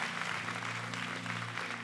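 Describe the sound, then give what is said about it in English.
An audience claps steadily for a team, a dense wash of many hands applauding at once with no pauses, beneath a low steady hum. “Let's clap our hands for the team.”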